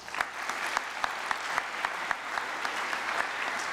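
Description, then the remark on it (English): An audience at a 2019 high school graduation claps steadily for a graduate, a dense wash of many hands with sharper individual claps popping out at a quick, even pace, moderately loud, with no talking. “Please give another big round of applause to all of our 2019 high school graduates.”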